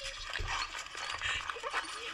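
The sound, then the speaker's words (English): A happy dog whimpers and lets out short high yips over a couple of seconds, slightly muffled and noisy, as if played back from a video. “This is a happy dog.”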